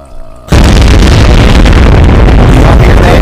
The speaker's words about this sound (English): Can y'all hear that loud ass explosion that just happened? Barely. Yeah. It was low.